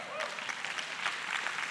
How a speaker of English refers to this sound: Show of hands, those of you that just clapped.